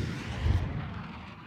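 A low, rumbling roar like an aeroplane flying overhead swells briefly and then eases into a steady drone, with no voices.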